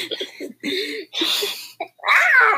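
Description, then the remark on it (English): Someone does a vocal cat impression: several short, strained yowling and hissing bursts, ending in a longer, louder screechy cry with a rising pitch. “Like a cat?”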